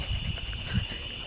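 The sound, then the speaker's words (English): A steady high-pitched insect drone hangs over a humid summer night outdoors during a night walk, with a few soft low rustles or footsteps underneath and no voices. “We are on a night walk. On a humid summer night.”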